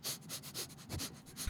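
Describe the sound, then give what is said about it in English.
A voice imitates a group of men sniffing the air around someone at an airport baggage claim: a quick series of short, breathy inhalations in a steady rhythm, fairly quiet, with no talking. “They all began to sniff the air around Kyle.”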